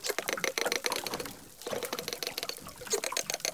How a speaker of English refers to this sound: And these animals are in sync, at 600 beats a minute. The researchers sent us the dolphin sounds that they recorded. Here is one dolphin singing alone. And here are the dolphins singing together.